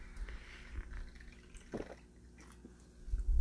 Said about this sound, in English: Let me sip my coffee real quick.